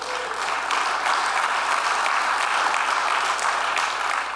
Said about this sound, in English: Yes, give him a hand clap if you will.